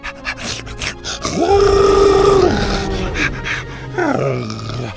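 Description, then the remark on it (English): A loud, drawn-out roar from Buck, a dinosaur with a bite mark and claw marks on his side, as he wags his tail. The roar rises, then holds a steady bellowing tone for about a second, followed by a shorter, rising roar near the end, with no talking. “Wagging his tail, he licked Bo's face and roared again.”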